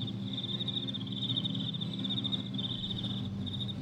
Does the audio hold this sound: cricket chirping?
yes